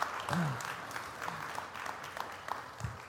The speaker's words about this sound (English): And so I want you guys to give him a round of applause.